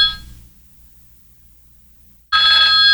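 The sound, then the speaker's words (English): A cell phone rings with a bright electronic tone that fades, falls quiet for about two seconds, then bursts back in loud. No voices are heard. “You guys, my phone's ringing again.”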